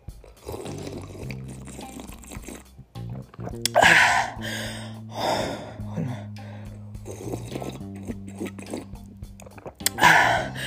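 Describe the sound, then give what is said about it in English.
Slurping sips of tea, each followed by a breathy exhale, with two louder bursts several seconds apart over a low, steady background hum. “So, you know, I'm drinking teas and stuff like that.”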